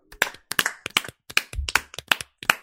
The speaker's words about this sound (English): The number 13 seed, Toy Story 2, made the journey, got the crown, and as we do at the end of every single episode, we're going to clap it out.